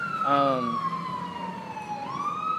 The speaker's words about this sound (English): Well, an ambulance going by.